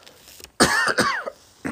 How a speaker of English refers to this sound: Excuse me while I cough.